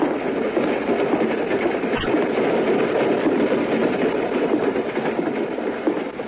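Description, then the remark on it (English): A passenger train rolls steadily along the tracks, a constant rumble with faint rhythmic clatter and a brief sharp metallic click partway through, no voices. “It's a shame there's hardly anybody on this train”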